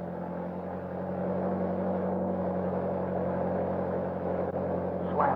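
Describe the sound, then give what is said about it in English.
A car engine is started and hums steadily, a low, even rumble with a layered tone that holds constant throughout, as if the vehicle is idling or cruising. No one speaks. “All right, kick that motor over.”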